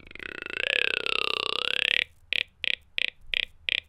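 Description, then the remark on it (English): A voice imitates a whitetail deer grunt, the call heard from deer in mating season during the rut: one long, droning, guttural croak lasting about two seconds, followed by six short, clipped grunts in a quick, steady rhythm. “Wait, speaking of whitetail, can you do it? My deer grunt?”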